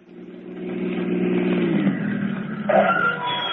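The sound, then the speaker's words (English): A car engine revs, its steady mid-pitched hum climbing and shifting as the motor works, loud and continuous with no voices over it. “get in the car.”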